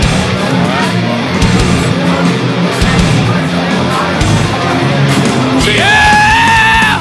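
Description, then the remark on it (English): A loud, drawn-out human yell bursts in near the end, holding a strained, wavering pitch for over a second above a dense, roaring wall of noise that fills the whole clip. “great yell from the legend to end this episode of the Metal Moment Podcast”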